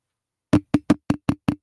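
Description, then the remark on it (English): A quick run of seven firm knocks on a door, evenly spaced, starting after a brief silence. Each rap is solid and hollow, with no voices present. “And then I came home and I was sitting here basically just hoping and praying that I didn't get a knock on the door an hour later.”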